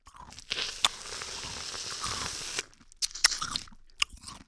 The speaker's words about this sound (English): It's a very crunchy, icy pickle.